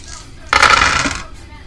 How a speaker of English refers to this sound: It's a complete wash on my dice roll.